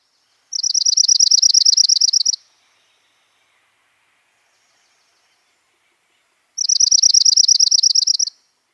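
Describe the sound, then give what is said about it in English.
Two separate dark-eyed junco songs, each a loose, jingly trill of rapid repeated notes lasting about two seconds, clear, separated by several seconds of quiet. “The songs of dark-eyed juncos are often described as loose and jingly.”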